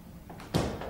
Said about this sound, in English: Okay, let me shut the door.